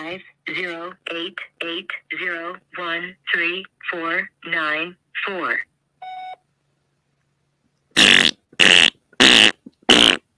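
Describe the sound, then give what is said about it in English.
A recorded voicemail greeting speaks in short phrases, then a single beep sounds. After a brief silence, four loud, raspy fart noises blast out in quick succession, left as a voicemail message after phoning a number. “It's always funny when you just get a message and you open it up, it just farts.”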